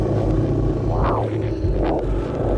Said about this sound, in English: I've recorded this sound. This is something I found inside of me. A heartbeat.